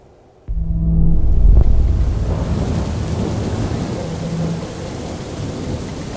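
A sudden crack of thunder breaks into a heavy, roaring Pacific storm at sea, with rain and wind-driven sea noise churning loudly and steadily throughout, no voices present.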